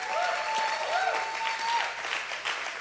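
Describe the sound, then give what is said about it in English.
An audience claps steadily and cheers to honor the fathers standing up, with a dense, continuous wash of applause and a few rising and falling high-pitched whoops or whistles riding over it. “And I just want to honor him. Just cheer for him.”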